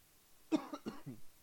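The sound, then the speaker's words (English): A short burst of coughing from a speaker at a microphone: two or three quick harsh coughs followed by a softer throaty cough, with no talking. “I don't know why I'm coughing all of a sudden.”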